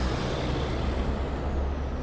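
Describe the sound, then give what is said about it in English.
Steady, loud road noise of heavy truck traffic rolling past on a road in Commerce, where about 35,000 trucks pass each day: a continuous low rumble of big trucks and engines with a broad hiss of tires, no voices. “to get a sense of it, just pull into traffic.”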